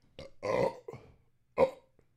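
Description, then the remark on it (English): A series of loud burps: a long drawn-out belch followed by a shorter one and a final abrupt burp after a brief pause, with no talking. “Burp life.”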